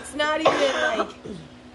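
A rough throat clearing runs into a couple of short, harsh coughs, then trails off into a quieter throaty rumble, with no clear words spoken.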